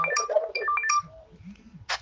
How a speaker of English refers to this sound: That phone that just went on a video, please take it out. That's where there is that noise, please.